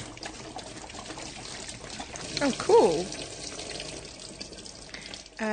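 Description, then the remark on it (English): Water gushes steadily out of an upturned bottle into a sink as the bottle is rotated swiftly in circles, forming a whirlpool with no water in the centre; a continuous swirling, gurgling pour that runs throughout, with a brief spoken exclamation partway through. “It created a whirlpool when I stopped, and it just poured all the way out in a sort of circular, so it was at the sides, but there was no water in the centre.”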